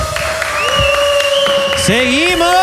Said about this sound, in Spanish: Fuerte palmas